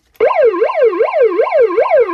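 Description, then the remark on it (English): A loud electronic siren sound effect, sounded as a 'douchebag alert', starts abruptly and rapidly sweeps up and down in pitch, cycling about every half second in a steady warbling yelp with no voices. “Let's sound the alarm.”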